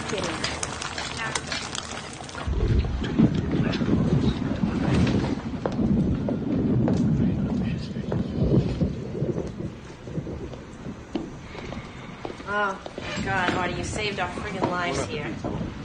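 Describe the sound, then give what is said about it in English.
A thunderstorm in a scene from The Sopranos, where a storm knocked out power at Artie Bucco's restaurant. Steady, heavy rain hisses throughout. Deep rolling thunder rumbles in after a couple of seconds and keeps up, and indistinct voices come through near the end. “This, one of the many great scenes in The Sopranos, when there was a storm that knocked out power and they huddled together at Artie Bucco's restaurant to share a meal with the family.”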